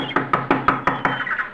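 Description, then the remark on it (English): Six quick, evenly spaced, polite knocks on the door of a shack put together with paper, paste, and wire on an island, fairly loud, in a steady rhythm with no voices. “A shack put together with paper, paste, and wire. I knocked politely.”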